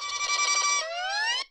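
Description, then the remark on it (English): A bug-type Pokémon's cry from a video game: a loud, buzzy synthetic tone with stacked harmonics that holds steady, then bends upward in pitch like a rising siren before cutting off abruptly, lasting under two seconds. “Can I play the cry real quick?”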